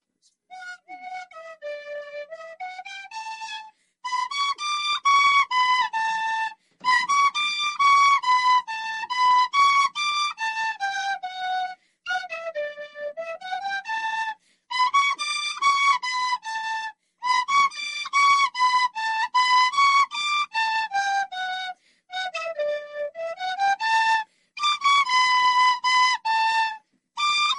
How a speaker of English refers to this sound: two quality musical artists who are going to play a bit of tin whistle for us